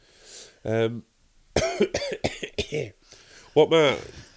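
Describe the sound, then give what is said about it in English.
A loud run of harsh coughs, several sharp bursts in quick succession, with a short voiced sound before them and another rough cough-like burst at the end. “Coughing like that.”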